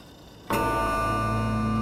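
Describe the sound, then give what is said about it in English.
A clock strikes one o'clock, a single loud bell-like chime whose rich ringing tone sustains after a quiet lead-in, with no one speaking. “Ah, it's 1 o'clock. Here it is.”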